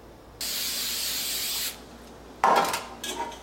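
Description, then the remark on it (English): Cooking spray hisses onto a baking pan, greasing it for a cake, in one steady burst of just over a second, then two shorter, sputtering sprays follow after a brief pause, fairly loud, with no one talking. Recorded in Old Orchard Beach, Maine. “You're also supposed to grease the pan and use flour, cooking spray.”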